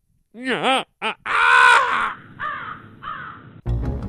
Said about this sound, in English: Next time you're walking down the street and you see a bunch of black crows circling overhead, they might just have murder on their mind.